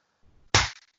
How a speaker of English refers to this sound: A single clap.